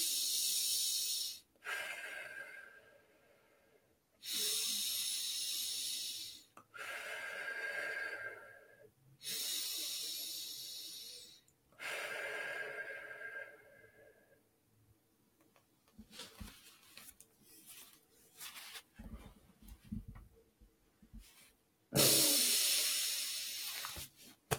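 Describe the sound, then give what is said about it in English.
Three deep, loud breaths in a steady rhythm, each a long rushing hiss, then a long quiet stretch of faint shuffles before one last strong breath bursts out, blowing all the air out for a stomach vacuum exercise. No one speaks. “I'm going to do three breaths and then I'll do my vacuum, you guys.”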